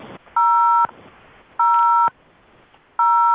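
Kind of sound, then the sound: signal or alarm, telephone keypad button tones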